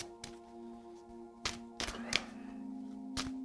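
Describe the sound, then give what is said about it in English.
Tarot cards are shuffled before a reading: several sharp papery snaps and riffles at irregular intervals, with a soft steady hum underneath and no voices. “First of all, I will do my shuffling.”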